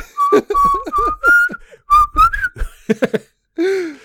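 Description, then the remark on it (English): Someone whistles a bouncy tune in short, clear phrases, fairly loud, riding along over a thumping dance beat with brief pauses between bursts, as audiences whistle along to strippers dancing during a funeral procession in China. “I've never heard this of whistling along to strip club music.”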